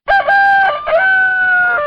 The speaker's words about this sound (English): As the rooster crows, it also signifies the next album.